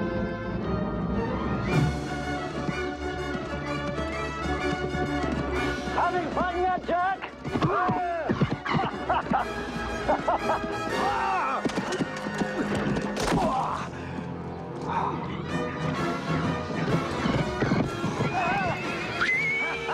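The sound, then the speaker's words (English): In a horse-jumping scene from Caddyshack 2, horse hooves clip-clop steadily while a horse neighs and whinnies several times, loud, in a busy, dense scene with voices mixed in. “That's a scene of horse jumping from Caddyshack 2.”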